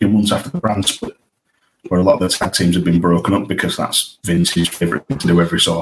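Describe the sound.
A man talks over a call line, and his voice cuts out abruptly mid-sentence, leaving a brief dead silence before resuming, with another short dropout a few seconds later.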